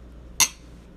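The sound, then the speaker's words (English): A single bright clink of two beer glasses touching in a toast, sharp, with a brief ringing tone that fades quickly. “So we haven't even tasted the beer yet, but cheers. Let's do that. Cheers.”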